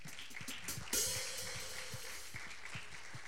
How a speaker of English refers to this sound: Can we get a round of applause for all of our guests today?